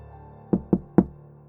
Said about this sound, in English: Always three knocks on the door. Assertive knocks, not too strong, but enough to be heard.